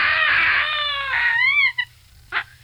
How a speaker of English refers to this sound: That is a baboon. It's classified as an old world monkey and is found in Africa and the Arabian Peninsula. The largest baboons are about 47 inches long and they weigh about 88 pounds. They live in open savannas and woodlands in the hills of Africa.